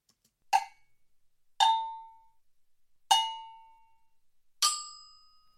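Four separate metallic agogo bell strikes, evenly spaced with clear ringing tones that decay quickly; the later hits sound at slightly different, higher pitches. No talking.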